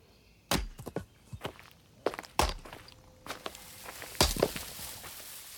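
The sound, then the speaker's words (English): Sharp, heavy thunks of a man splitting logs in the woods, three loud strikes spaced irregularly with smaller knocks and rustling between them, no talking. “Sounds like someone chopping wood.”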